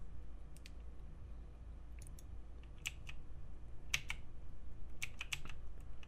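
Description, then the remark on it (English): Scattered computer keyboard keystrokes, a few sharp clicks at a time with irregular pauses between them, heard over a steady low background hum with no talking. “I literally can't type anymore.”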